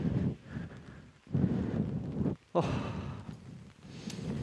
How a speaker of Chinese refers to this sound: 哦，下雨天散步其实湿湿的。